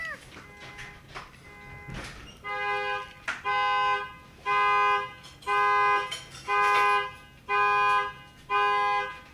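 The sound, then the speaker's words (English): A truck's alarm blares in repeated, evenly spaced electronic bursts, loud, each a steady harmonic tone lasting about a second with short gaps between. “That your shit? I never heard it go off.”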